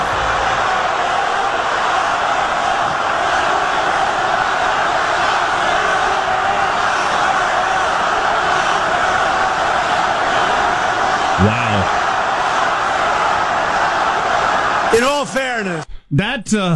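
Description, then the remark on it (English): A large crowd at a rally chants and yells in unison, some chanting "lock her up" and "Trump, Trump, Trump". It is a loud, dense wall of voices that holds steady for the whole stretch before breaking off abruptly at the end. “That was kind of the locker up chant.”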